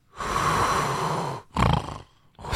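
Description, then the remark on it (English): A voice imitates the heavy, rasping breathing of a man sleeping on a red-eye flight: a long, loud, noisy inhale-like rumble, a shorter gravelly snort, then another beginning. Harsh, with no talking. “And the guy is knocked out. Like, you can hear him breathing like...”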